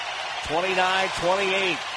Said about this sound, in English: And now Klay Thompson comes back out of the tunnel from the locker room and listen to the crowd response. He's limping badly.